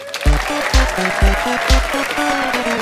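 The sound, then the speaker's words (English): Audience applause and cheering in Edinburgh as guest Mark Dolan is welcomed on, washing over a loud walk-on track, with a steady, heavy bass thump pulsing about twice a second beneath the crowd noise. “Would you please give a huge round of applause for Mr. Mark Dolan?”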